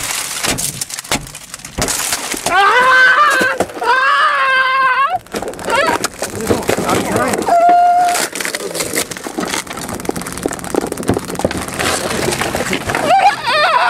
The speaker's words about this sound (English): Yep, there's him getting tased.